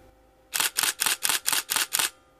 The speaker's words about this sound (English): Well, the shutter button is with the DSLR cameras. It has that clicking sound. And I have my camera right here. And what I'll show you is this clicking sound right here.